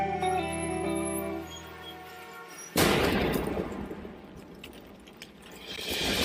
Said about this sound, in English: While we look down at our phones, they'll drop a bomb from a drone, then an explosion.